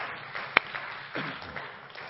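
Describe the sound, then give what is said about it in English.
A church audience clapping their hands unto the Lord before being seated, in a dense, steady wash of applause, with one sharp, louder clap standing out early on. No one is speaking over it. “Clap your hands one more time unto the Lord before you are seated.”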